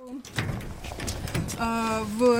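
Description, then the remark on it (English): A priest unlocks and pushes open the heavy locked door of his shelled church in the village of Baramoha: a brief rattle and clunk of the latch, then a long, loud creak from the hinges as it swings. “opens the locked door anyway.”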